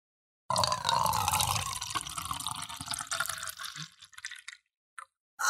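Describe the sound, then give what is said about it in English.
Someone chugs a drink like a shot near the microphone in one steady run of wet gulping and sloshing lasting about four seconds. A few short swallows and a final wet burst follow after brief pauses. Nobody speaks. “You have to like chug it like a shot.”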